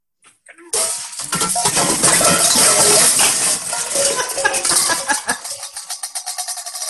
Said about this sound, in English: Is that when they're in the kitchen and Dennis Leary like pulls a pot and or knocks a pot off the hanging rack and then everything falls? That is correct. Yep. He hits a pot with the phone and then all of the rest of the pots fall after.